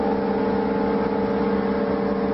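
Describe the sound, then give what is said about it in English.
A mysterious steady, droning low-frequency hum heard in West Seattle, keeping people awake, with a grinding, mechanical quality, holding constant and loud throughout with layered tonal bands and no speech or breaks. “That low-frequency hum has had people wondering just what is it? There are plenty of theories. It definitely sounds like grinding or machinery.”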